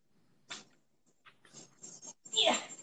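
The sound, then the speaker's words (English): A dog makes a series of short, uneven noises, a few brief bursts followed by a louder, whiny cry at the end, with no talking. “Sorry, you know, my dog What's he always wants to be doing? in the middle of my podcast.”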